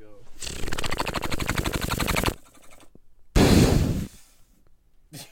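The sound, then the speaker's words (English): Breath blasts straight into an old microphone, blowing dust off it: a long, rattling, fluttering gust, a short pause, then a loud booming whoosh of wind noise, followed by a faint final puff. “I just blew dust everywhere. That's how old this mic is, bro.”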